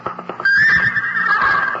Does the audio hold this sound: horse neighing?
yes